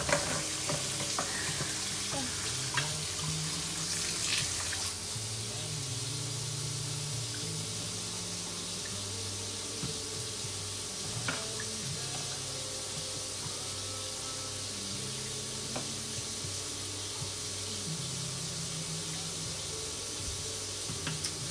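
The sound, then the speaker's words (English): Water drains steadily from a kitchen sink, a continuous hiss with low, uneven gurgling underneath that rises and falls throughout, with no voices. “The water took forever to get out of there.”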